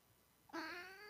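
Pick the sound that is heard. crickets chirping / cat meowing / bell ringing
cat meowing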